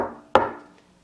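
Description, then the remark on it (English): A single sharp knock on a wooden courtroom door, the judge's knock before entering, fairly loud, with a short ringing decay, following the fading tail of an earlier knock. No one speaks. “When I'm doing the knock, it's because that's the judge's knocking”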